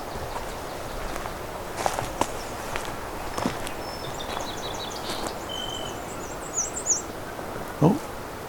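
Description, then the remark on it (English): A song sparrow sings a fairly faint phrase of repeated notes running into a quick trill, over outdoor background noise with scattered rustling, footstep-like sounds. “The singing song sparrow.”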